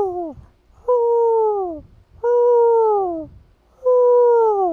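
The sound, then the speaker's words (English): Four loud, close hoots, each lasting about a second with a smooth, slightly falling pitch, repeated at a steady pace with short pauses between them and no talking. “What'd you think of that, Marty's Owl?”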